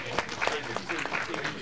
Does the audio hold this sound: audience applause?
yes